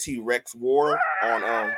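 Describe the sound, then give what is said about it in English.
A person imitates a T-Rex dinosaur roar: a brief strained cry, then a loud, drawn-out screeching vocal roar that rises in pitch, alone. “So the noise that is a dinosaur roar are the T-Rex, mainly the T-Rex.”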